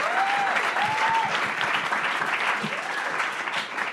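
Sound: crowd applause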